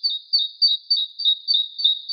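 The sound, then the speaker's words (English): A city songbird sings a rapid, high-pitched song of repeated chirping phrases, about eight quick bursts in steady rhythm, clear with no other sounds. “Let's listen to a forest bird. And now, its city cousin.”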